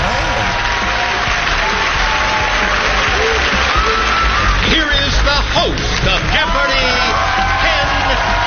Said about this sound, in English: And it was also, after 2.5 years, the first time you heard clapping on the announcement because they actually have an audience back at Jeopardy.